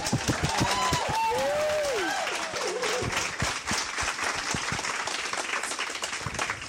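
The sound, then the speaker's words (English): A sustained round of applause from a crowd for Rennie Edo Lodge, dense steady clapping with a few whoops and cheering voices rising over it early on, then the clapping thins slightly toward the end. “So can we just have a round of applause so it's like on the podcast for Rennie Edo Lodge?”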